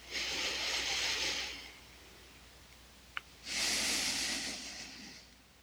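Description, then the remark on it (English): A slow, airy breath in through the nose followed by a longer breath out through the mouth, fairly soft, with a brief quiet pause and a tiny click between them, during a guided relaxation. “Breathing in your nose and out your mouth, or in and out of your nose.”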